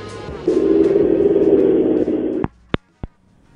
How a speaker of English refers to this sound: I like the sound of that truck going up the hill, too. Well, I'm assuming it was a hill.